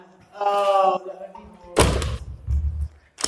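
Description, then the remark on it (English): A heavy solid wood cell door with a small food trap door swings shut: a drawn-out creak, then a loud, booming slam that rumbles briefly, followed by a smaller knock as it settles. “And if you were noisy or you're not behaving in that, then they would shut this door. Oh, it's got double doors.”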